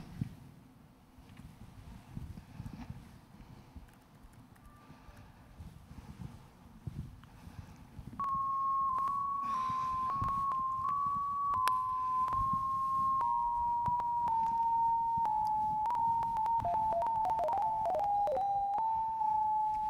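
Wi-Fi signal strength from a laptop tethered to a phone, turned into audio using Linux BPF, rendered as a steady electronic tone that enters about midway and slowly glides lower in pitch, wavering toward the end, over a low rumbling, wind-like background.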